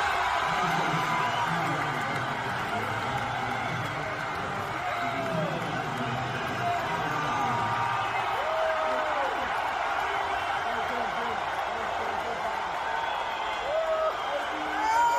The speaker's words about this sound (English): But then to be totally transparent, there was some cheering. Here is Donald Trump walking onto the field, and you definitely hear more cheering here.